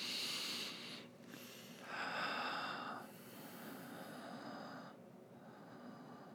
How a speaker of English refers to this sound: Now, for those of you who can't see what I'm doing is I'm just breathing in some big energy.